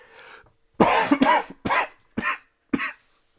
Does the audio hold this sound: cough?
yes